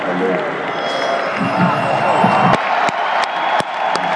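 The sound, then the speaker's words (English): A large crowd applauds and cheers after Israel's song performance in a steady, dense roar, with scattered whoops rising above it and a few sharp claps or bursts near the end. “There's a lot of applause.”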